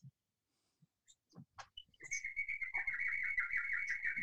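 Birds chirp and twitter continuously in the background, a bright, busy stream of calls that builds after a few scattered clicks and thumps, steady with no one speaking.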